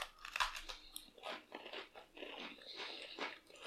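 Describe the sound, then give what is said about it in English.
Biting and chewing of a crunchy cinnamon cookie, a sharp initial bite followed by a steady run of crisp, crackly crunches for a few seconds with no talking. “There was, like, a really unpleasant give to the cookie before it started to crunch.”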